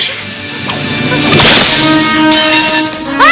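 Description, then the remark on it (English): A single sharp whip crack from a film scene snaps out midway through, loud, over a sustained musical backdrop with a brief rising swish near the end. “Indy shows up, pulls out the whip, and you get this great sound effect.”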